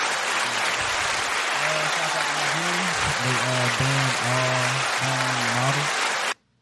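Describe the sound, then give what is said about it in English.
A crowd applauds loudly and steadily for about six seconds, with voices cheering or calling out over the clapping, before it cuts off abruptly. “But let me get an applause.”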